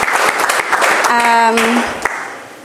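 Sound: audience applause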